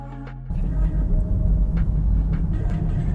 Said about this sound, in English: Now we're in the car.